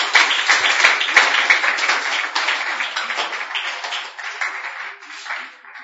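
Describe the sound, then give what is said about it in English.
A crowd claps their hands for the Lord in dense, sustained applause for several seconds, then thins and fades slightly toward the end. “You can put your hands together for the Lord.”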